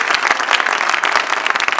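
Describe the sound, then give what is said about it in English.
An audience claps together to celebrate the Lord in a dense, steady burst of applause, many overlapping hand claps forming a loud, bright wash of sound with no speech. “Celebrate the Lord once again with a clap.”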